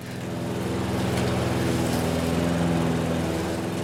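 A lawn mower engine runs steadily while someone mows a yard: a loud, continuous buzzing drone with a throbbing low hum that holds at an even pitch throughout, with no voices.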